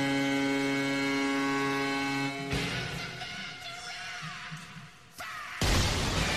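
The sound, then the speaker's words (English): A steady, buzzing horn-like drone holds for a couple of seconds, then a sudden booming cannon blast from the Columbus Blue Jackets arena cannon cuts in over crowd roar, followed by a second loud blast near the end. “There was a cannon there.”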